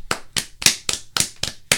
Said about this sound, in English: So, round of applause.